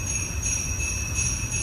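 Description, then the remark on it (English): Sleigh bells jingle as a smart video doorbell's seasonal Christmas motion alert when someone moves by, a steady shimmering ring with sustained high tones over a low rumble, holding an even loudness throughout with no voices. “So you hear sleigh bells whenever somebody comes by.”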